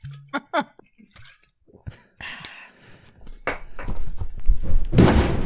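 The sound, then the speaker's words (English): Several sharp, heavy thuds of something slamming down on a metal table arrive in an irregular burst, loud, followed by a swelling wash of rumbling, clattering noise. “This table I still have a slamming going. It's a hell of a table.”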